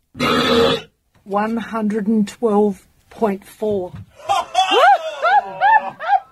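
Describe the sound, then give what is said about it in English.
A loud, drawn-out, record-breaking human belch measuring 112.4 decibels erupts, followed by a stretch of animated voices and laughter-like vocal sounds. “And then he did his belch. 112.4 decibels is what his burp comes in.”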